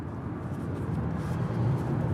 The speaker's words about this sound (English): So I'm now recording this from the car on my way from home into the airport. It is 6:15 and I am reflecting on the day ahead.